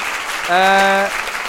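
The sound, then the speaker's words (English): A crowd claps steadily in a dense, continuous wash of applause, with a single sustained vocal whoop rising above it for about half a second midway through, applauding Alistair Campbell and Adam Boulton at the end of a live Christmas show. “But to end the show, first of all, ladies and gentlemen, please, a round of applause for Alistair Campbell and Adam Boulton.”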